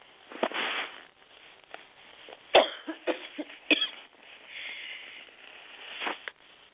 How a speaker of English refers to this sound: Sorry about that. I didn't mean to cough in your ear.